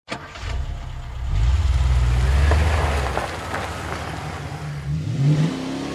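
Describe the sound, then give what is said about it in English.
A blue Ford Mustang's V6 engine starts up and revs, its low rumble climbing in pitch, easing back, then rising again in a second burst of acceleration. Fairly loud, with no voices. “She loved that car, loved downshifting its V6 engine on the winding high desert roads near their home in Palmdale, 70 miles north of L.A.”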